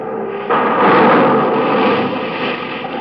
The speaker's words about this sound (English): You know why that happened? You know why that man's store just blew up in his face?